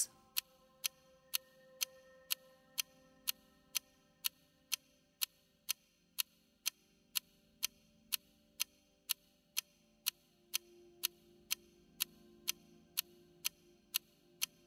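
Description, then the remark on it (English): An analog mechanical clock ticks steadily, sharp clicks spaced about half a second apart in an even rhythm, clear against a quiet, faintly humming background with no voices. “Focus your attention on the tick of the clock.”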